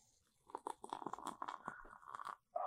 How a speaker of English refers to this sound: Sounds like soda. Sounds like soda. The sound of soda. So nice. It's a good sound. It's a good, good sound.